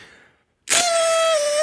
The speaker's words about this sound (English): This was a celebratory whistle. How do you call these things? I don't know. So if that was the official celebration. Fantastic. I like it.